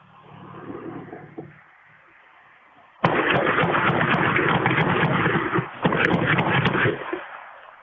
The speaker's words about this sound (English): You can hear the car coming. Now it's going to pass in front of this driveway. And then on the right side of the screen, a couple doors down, you'll see the muzzle flashes.